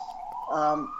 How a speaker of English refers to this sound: We'll pause for the sirens.